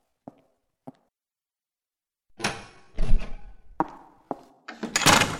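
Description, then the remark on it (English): Two sharp latch clicks, then a heavy door, beyond which Master Royce awaits, grinds and rumbles open with scraping, a few knocks and a rising rush of noise at the end. No one speaks. “Master Royce awaits beyond this door.”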